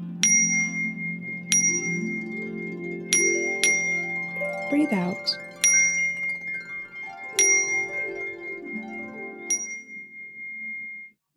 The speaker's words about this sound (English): I'm going to play some chimes. Your job is to breathe and count the chimes in your head.